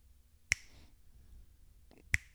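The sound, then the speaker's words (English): Someone imitates a dripping faucet with two sharp, ringing plinks about a second and a half apart. Each drip is a crisp, bright click with a brief high-pitched tail, set against quiet background hiss. “You have a drippy faucet, and it's not like a...”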